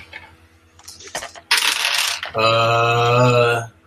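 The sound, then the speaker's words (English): Three six-sided dice (3d6) clatter and rattle across a hard surface in a quick burst of clicks, followed by a loud, sustained metallic ringing whir as one spins before settling. No voices. “Okay, roll some dice, man.”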